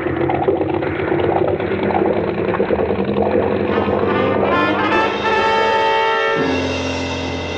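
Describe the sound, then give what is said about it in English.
The two big engines of a boat, restarted after a piece of kelp was cleared from the water screen, roar steadily and loudly, then rev with a rising whine about halfway through before settling into a sustained droning hum. No voices are heard. “And two red-hot manifolds absorbing all the heat of the two big engines.”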